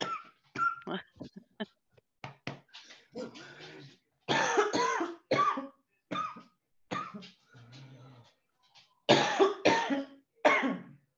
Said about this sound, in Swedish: Oj. Det är bara hosta klart och andas.